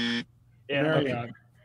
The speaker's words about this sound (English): It's pretty fast on that buzzer.